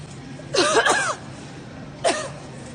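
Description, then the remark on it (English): A woman in a grocery store gives two bursts of raspy coughing: a longer fit of several rough, voiced hacks, a pause, then a single short cough. Fairly loud over a quiet background. “She's coughing at me.”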